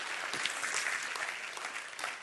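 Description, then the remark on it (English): An audience claps steadily, a dense, continuous wash of many hands with no single beats standing out, holding at an even, fairly strong level throughout. “You need to clap your hands for that.”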